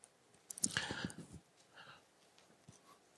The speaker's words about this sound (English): I like that, the sound of turning pages.